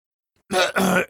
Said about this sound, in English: sorry, I had a cough, something in my throat there.